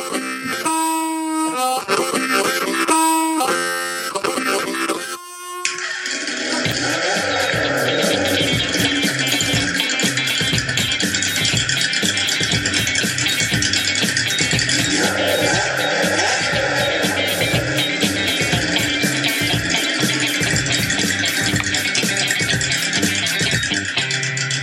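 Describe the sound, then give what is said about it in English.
Loud intro music plays alone: a short opening of bright, punchy chords, then a dense, driving full-band section with a steady pounding beat that carries on without any talking. “We'll be right back after this intro music. This is totally unnecessary intro music.”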